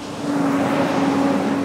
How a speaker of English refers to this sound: On an industrial street in the city of Riverside, delivery trucks rumble past a small wooden building.